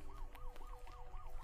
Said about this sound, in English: You don't even have the lights on. Why do you have the sirens going?